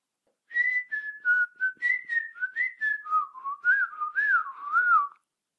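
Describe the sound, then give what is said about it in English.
A person whistles a short, bouncy tune alone, a clear steady tone stepping up and down through a string of quick notes for about five seconds, fairly loud. “Whistling. I just learned to whistle. I whistle loud and free.”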